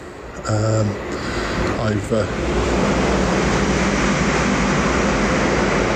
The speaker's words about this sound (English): Well, I'm recording this on Weybridge Station, which is only a stop down from where I live.